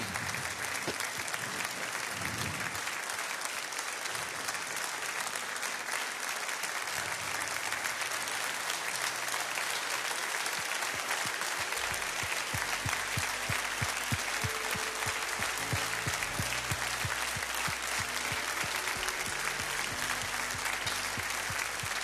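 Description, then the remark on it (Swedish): An audience claps steadily and loudly for the whole stretch, a dense wash of applause with no voices on top; partway through, soft low musical tones begin beneath the clapping. “Ja, ge honom en applåd.”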